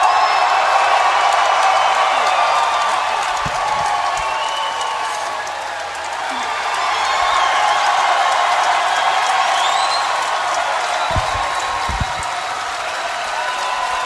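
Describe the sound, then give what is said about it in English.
A large WWE crowd cheers and applauds steadily, a loud, dense roar of clapping and voices with scattered whoops and whistles rising above it, sustained throughout with a brief dip midway. “One more match from one of the better crowds that I've been in front of in the last 5 years.”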